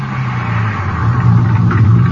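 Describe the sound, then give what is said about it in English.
A car drives steadily at speed on an empty highway at almost 4 a.m., about 20 minutes from Odessa, its engine humming low and constant beneath a broad wash of road noise, fairly loud, with no one speaking. “Guess I can stop any place on this highway. Haven't seen another car in an hour.”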